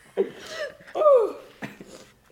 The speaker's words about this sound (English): He just coughed everywhere.